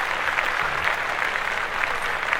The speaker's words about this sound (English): Oh, our executive producer is doing the damn thing. She deserves some claps. Shout out to our executive producer.